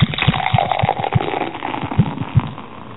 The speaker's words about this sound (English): Wait a minute. I have the perfect soda pour for this.